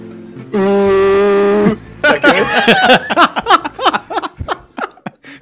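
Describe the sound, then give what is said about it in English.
A person imitates a ship's foghorn with one loud, steady, low-pitched honk lasting about a second, then bursts into rapid laughter and chatter from several people. “you want to give us a quick foghorn?”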